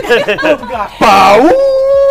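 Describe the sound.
A dog howls along with voices singing a happy birthday song, short sung phrases giving way to a loud wavering cry and then a long, steady howl.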